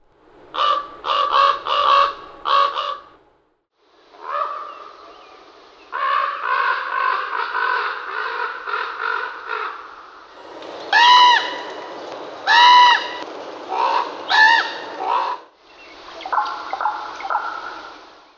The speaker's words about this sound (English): Ravens, on the other hand, express themselves with such complexity that we're overwhelmed. We're tuned to the melodies of human music and struggle with the multifarious shapes of raven croak and click and whistle.